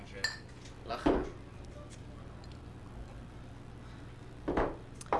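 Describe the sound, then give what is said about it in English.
Glasses of fresh beer clink together in a toast, a few short bright taps spaced across the moment, with a low background hum and faint murmuring between them. “But before we forget, we all have a fresh beer in front of us. So how about a cheers?”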